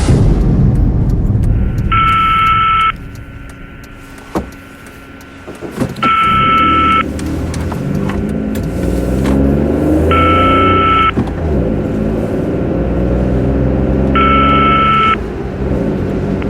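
A car engine roars steadily with repeated rising revs as it speeds quickly southward through light traffic, not running red lights, while a high electronic ringing tone sounds four times at even intervals over the rumble.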